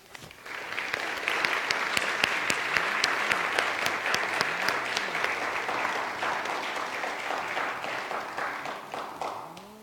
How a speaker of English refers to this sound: Let's show our appreciation for our learners, our teachers, and our parents with our applause, both in person and virtually.